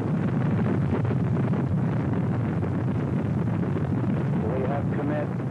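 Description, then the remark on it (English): A deep, continuous roar of rocket engines at a launch liftoff at 7:51 a.m. Eastern Standard Time, loud and rumbling without a break, with faint traces of a voice surfacing near the end. “We have liftoff. Liftoff at 7:51 a.m. Eastern Standard Time.”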